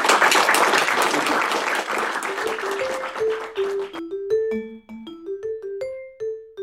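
An audience at a Notre Dame International Security Center seminar applauds to thank the speaker, with dense, steady clapping that gradually fades over several seconds while a bright melodic tune of short, clear notes rises in and takes over.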